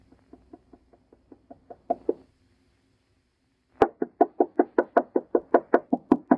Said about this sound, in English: Knock harder, …. Knock harder. I can't. It hurts my knuckle.